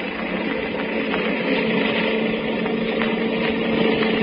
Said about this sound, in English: I'll have to step on it. Here we go. Well, this motorcycle can certainly travel.